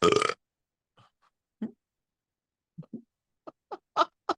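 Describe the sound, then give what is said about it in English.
A long, drawn-out burp breaks into a string of short, croaky gulps spread over several seconds, fairly loud, following a brief noisy burst at the start. No one speaks. “Oh, okay, that was not only a lengthy burp, but a lengthy amount of time before one crept up.”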